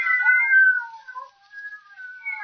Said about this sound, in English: Yes, some fiend, knowing her deadly fear of cats, has locked her in here with half a dozen of them. Shoo. Shoo.